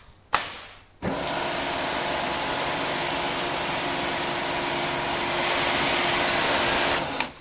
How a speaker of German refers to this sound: Kaltes Wasser genügt und weg ist die unerwünschte Bemalung. 100 Bar Wasserdruck aus dem Hochdruckreiniger hält die Silikonschutzschicht aus. Mehr als 20 Mal kann die Oberfläche besprüht und wieder gesäubert werden.